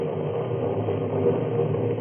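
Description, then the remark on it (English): A car engine hums steadily while driving along a highway at night, a constant, muffled rumble of motor and road noise with no pauses or talking. “Down the highway into the darkness.”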